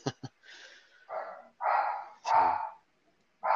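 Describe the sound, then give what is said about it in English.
A dog barks and yips in a string of short, sharp bursts, a couple of quick clicks followed by several louder, longer barks separated by brief pauses. “Sounds like you have a furry furry background noise there.”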